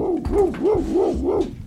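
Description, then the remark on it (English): A person mimics a dog barking, giving four quick, evenly spaced woof-like calls, each rising and falling in pitch, loud with no words spoken, aimed at a dog named Scout. “I thought he would go nuts because most dogs go nuts because I speak dog.”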